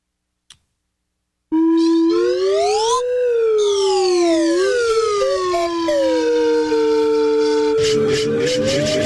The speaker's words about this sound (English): Martha, my lovely wife of 33 years, would chuckle if given a slide whistle plus douchebag call out in her honor. It's a slow slide whistle.